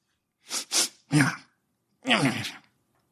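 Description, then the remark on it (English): A person vocally imitates a small beady-eyed creature in a well sneezing: a few quick, breathy sniff-like bursts as it sniffs the air, a short pause, then one loud, drawn-out sneeze sound, clear with no other talk. “And then it actually backs about 5 feet further down into the well and sneezes.”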